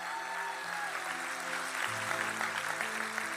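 A crowd claps steadily for a few seconds, a dense, even patter of many hands, with sustained low musical chords playing underneath that shift partway through.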